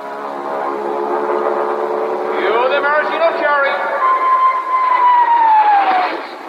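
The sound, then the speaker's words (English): Royal Canadian Air Force planes flying overhead towing a 10-ton maraschino cherry: engines drone steadily in a dense, buzzing roar, with rising whines midway and then a long high whine that slowly falls in pitch as the planes pass overhead. “Then the Royal Canadian Air Force will fly overhead towing a 10-ton maraschino cherry, which will be dropped into the whipped cream to the cheering of 25,000 extras.”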